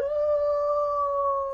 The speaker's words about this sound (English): A wolf.